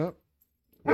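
Two German Shepherd dogs barking in a studio: two loud, sharp barks separated by about a second of silence, with no talking.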